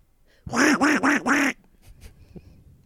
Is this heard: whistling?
no